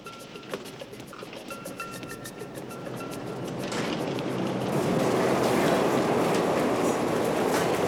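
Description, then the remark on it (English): An L train rumbles along the tracks with a rhythmic clickety-clack, the broad rushing roar growing steadily louder as it passes, with no voices present. “So I guess we commandeered the train.”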